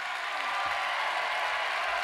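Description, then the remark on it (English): Steady applause from an audience at a live music show with a guest star, a dense continuous patter of many hands clapping at once, holding an even, fairly strong level throughout. “Thanks for that warm round of applause.”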